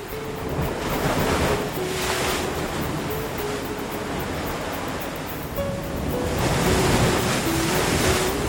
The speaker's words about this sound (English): Wait. I know that sound. The current is always stronger when the tide is high and the moor is full. Waves rush between the islands, roll over the sandbar, and crash onto the rocks.